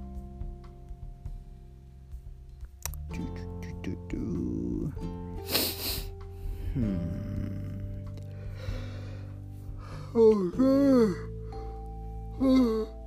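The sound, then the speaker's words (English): Someone yawns, long and drawn out, with breathy inhales and a sliding voiced groan near the end. There are no words, just steady low background noise. “I keep freaking yawning. It's insane.”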